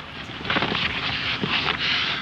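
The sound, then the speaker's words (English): Vigorous, continuous shuffling from a scene in a Marx Brothers movie, with a rough, hissy texture, rising and falling in rapid back-and-forth bursts throughout, fairly loud with no voices. “Sounds like some very intense shuffling to me. Back and forth.”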